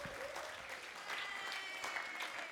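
A room full of people claps steadily, a dense, continuous patter of applause that holds at an even level for a few seconds, with faint crowd murmur underneath.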